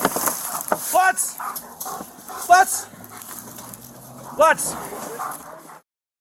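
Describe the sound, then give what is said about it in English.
A police dog named Red whimpers in three short, high-pitched whining bursts spaced a second or two apart while guarding a suspect, with muffled background voices and outdoor noise underneath. “Yeah, good boy, Red. That a good dog.”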